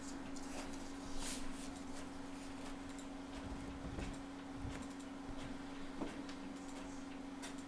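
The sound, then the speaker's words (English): A printer runs steadily, printing a three-page article sent from a keyboard, its low mechanical hum broken by irregular clicks and short whirring bursts as pages feed through. No one speaks. “How did we stop this printer?”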